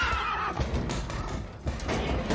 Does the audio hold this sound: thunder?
no